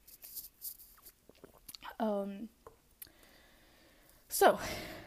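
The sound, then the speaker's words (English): Quiet mouth sounds of someone sipping tea: soft lip smacks and breaths, a brief hummed swallow midway, then a sharper slurp near the end. No one speaks. “Okay, I am going to be doing a lot of sniffling today and then just taking a few little breaks to sip on my tea.”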